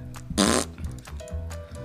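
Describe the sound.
A short, loud, buzzy raspberry blown with the lips by a man with an 80s hairdo to mimic a fart, lasting under a second, followed by quieter sputters over a steady low tonal hum.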